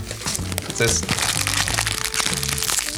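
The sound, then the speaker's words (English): A candy wrapper crinkles and crackles steadily for about three seconds, a dense, bright rustling texture, with a low murmuring voice underneath. “Wait, hold on. There's a candy wrapper.”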